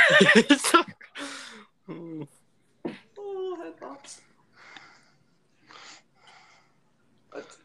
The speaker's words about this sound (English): Stop breathing! I'm not, bro. I'm just sitting here. Stop breathing. Bro, it's not even near my nose, bro. I literally turned it so far away.